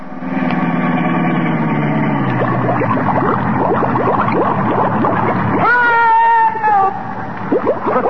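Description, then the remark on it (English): A car engine runs steadily as a car, sealed up by Jerry Colonna to keep out water, plunges into a 100-foot-deep bay he is trying to drive across. Busy splashing and bubbling gurgles follow. A whining tone rises near the end, all loud. “I don't need a bridge. I'll drive across the bay.”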